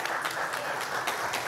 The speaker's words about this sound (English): So again, thank you for your generosity. Kudos to you. So one more hand clap for that.